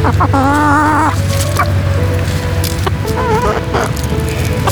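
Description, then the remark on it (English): Chickens cluck and squawk with short, warbling calls over a steady low hum, alongside scattered scratchy, pecking noises as they are being fed. “So right now we're going to go to the skate park, but first I have to feed the chickens.”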